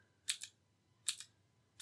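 Crisp clicking of a blue mechanical keyboard switch on a small tester holding three switch types, pressed three times at a steady pace, each press giving a sharp double click on the way down and back up, with no voices.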